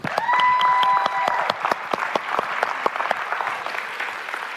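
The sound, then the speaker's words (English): A burst of audience applause after a personal testimony about a restored marriage, dense and steady at first, then thinning into scattered individual claps as it fades over a few seconds, with no voices. “Yeah, like I gotta get my clap on for that.”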